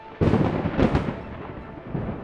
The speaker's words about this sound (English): Most people don't realize it, but you've heard a sonic boom before. Thunder is a sonic boom. It's just created by lightning.